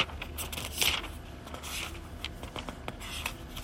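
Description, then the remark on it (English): Dry paper pages of a Bible being turned with dry fingers to find 1 Corinthians chapter 15, a run of soft, scratchy rustles and crinkles with one brighter swish early on, fairly quiet, with no voices. “Dry fingers and dry paper don't mix well.”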